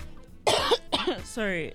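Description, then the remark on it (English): Two harsh coughs in quick succession, the first louder than the second, followed by a brief voiced sound as someone starts to speak again. “I think this hamatan is affecting our voices, or I'm coughing actually.”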